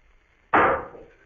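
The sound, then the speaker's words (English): A single dull, muffled thud with a faintly metallic, clang-like ring. It strikes suddenly out of near silence and fades away over about half a second, with no voices. “Suddenly, I was conscious of a dull, muffled thud, a thud that was almost a clang.”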